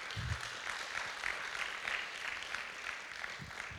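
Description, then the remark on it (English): A crowd applauds steadily for a man, dense overlapping claps forming a continuous wash of sound that holds at an even level throughout. “Come on, give him a good round of applause.”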